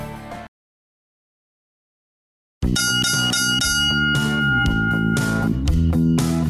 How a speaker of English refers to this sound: Ah, there it is, the saddest sound in radio, four bells. That means it's the fourth and final round of Doug and Marty versus the world.